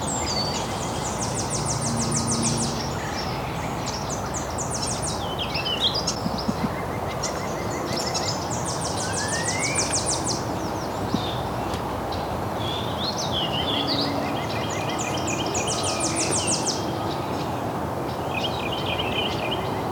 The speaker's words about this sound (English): I think that's more Wilson's Warbler. I'm gonna try to get my eyes on it though.